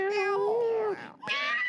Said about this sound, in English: I'm in the cat house, y'all. It's a lot of cats. They were just like meowing on the other episode. Yeah, you're going to hear them in the background.